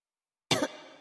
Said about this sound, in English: … starts coughing again